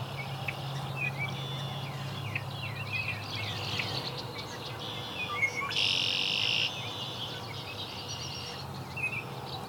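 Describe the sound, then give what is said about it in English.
A song sparrow sings a series of chirpy notes building to a brighter, buzzy trill midway, over steady outdoor ambience with a low hum and faint insect-like chatter. “Song sparrow.”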